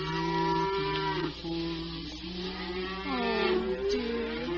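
Several cows being driven home moo at once in long, overlapping, drawn-out calls that rise and fall in pitch, fairly loud and continuous over a steady background hiss, with no one talking.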